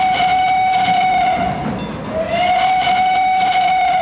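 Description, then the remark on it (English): An unscheduled freight train speeds down the tracks in St. Thomas, Ontario, in September 1885, roaring with a loud, sustained horn blast that briefly dips and returns, over rumbling wheels and rhythmic clatter, powerful with no voices. “It was the sound of an unscheduled freight train speeding down the tracks toward them.”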